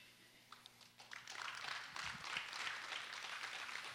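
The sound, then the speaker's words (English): A crowd breaks into applause as a clap for Jesus during a sermon, starting with a few scattered claps and swelling within a second into steady, dense clapping that holds for several seconds, with faint voices mixed underneath. “That's a good place for a good amen and a clap for Jesus.”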